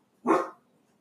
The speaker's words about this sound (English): Sorry, guys. There's another thunder. My dog's going crazy. I'm so sorry.